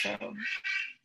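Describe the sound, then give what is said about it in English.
Harsh, raspy squawks from wild parrots, two or three loud grating calls close together, with a person briefly speaking at the very start. “Those are parrots.”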